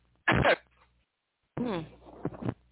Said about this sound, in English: Having a little problem here today. Everybody's been mowing their lawn, and I am deathly allergic, so that's the coughing today. Give me one second here.